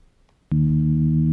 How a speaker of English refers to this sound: And you can hear the spins too. That's called a chirp, because it gets louder and higher at the same time.